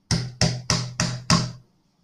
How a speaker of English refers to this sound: Cop knocks scare the shit out of me. That's a big part of my phobia, I guess. That's not what started the phobia, but I think that's what increased the phobia, is a fucking cop knock.